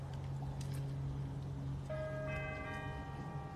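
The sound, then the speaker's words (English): Bells begin ringing partway through at 3 o'clock, their sustained metallic tones lingering over a steady low hum of background noise. “And the bells are going.”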